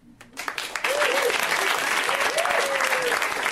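An audience at a comedy show bursts into loud, dense clapping that swells up within the first second and holds steady, with a few rising whoops and cheers riding over the applause.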